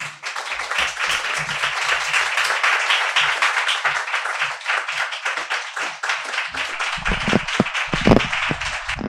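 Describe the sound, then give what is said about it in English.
A crowd applauds steadily for several seconds after a reader finishes reading a piece of writing at a reading event, a dense wash of overlapping hand claps at an even, sustained level, with a few sharper individual claps and some low thumps toward the end. “More applause for Mira.”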